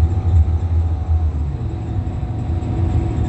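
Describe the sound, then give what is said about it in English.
A bus engine rumbles steadily, a deep, continuous low drone with a faint hum above it, running for a few seconds without pause and with no voices, at Euclid Avenue and Philip by Deanza Park around 6:29 p.m. “And again, this demon operating this bus, 3338.”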